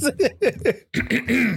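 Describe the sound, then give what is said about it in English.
A fairly loud throat clearing: four quick voiced rasps in a row, a brief pause, then a longer, drawn-out guttural clearing sound, with no talking around it. “Let me clear my throat when I say this.”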